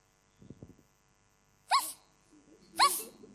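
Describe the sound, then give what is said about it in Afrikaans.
Two young children imitate a puppy with two sharp, high-pitched yaps about a second apart, fairly loud, after a brief soft murmur at the start. “Wat is anders as 'n kat? 'N hond, so, hoe lyk 'n hondjie?”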